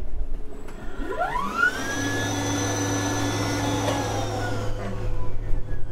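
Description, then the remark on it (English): The electric compressor of a hydrogen fuel cell car whirs up from rest with a rising whine as the car is first turned on, briefly running to full speed to calibrate the fuel cell, holds a steady high-pitched hum for a few seconds over a low drone, then winds down. Fairly loud, no talking. “Well, that's just the compressor, which runs up to full chat very briefly when we first turn it on, just to calibrate all the things in the fuel cell, and the car's now ready to go.”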